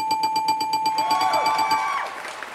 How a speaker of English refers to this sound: C, final answer, play the dinging bell.